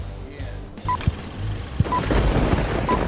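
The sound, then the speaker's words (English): A thunder sound effect: a deep rumble swells and holds, punctuated by a couple of low booms, with a few short high beeping tones sounding over it. “That little thunder just at the end there.”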